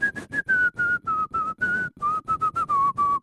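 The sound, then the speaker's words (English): Someone whistles a catchy pop tune, a quick run of short, choppy notes drifting slowly downward in pitch for about three seconds, with no talking. “I can't whistle that rapidly, I just realized.”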